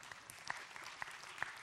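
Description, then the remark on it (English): An audience clapping, a soft, dense patter with a few sharper claps standing out, fairly quiet, with no one talking over it. “You can clap for that.”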